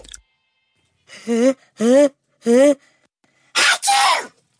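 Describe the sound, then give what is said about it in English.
A voice acts out a huge sneeze by the character Plod inside a submarine underwater: three drawn-out, pitched "ah" build-ups with pauses between, then one loud, breathy explosive burst, with nothing else heard. “Plod let out a huge sneeze.”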